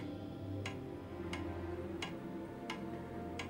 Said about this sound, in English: It's a clock. I found it last night. It was ticking. Must be one of them ticking clocks, eh?